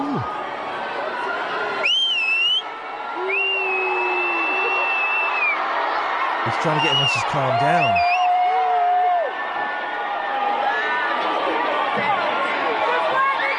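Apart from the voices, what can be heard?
crowd screaming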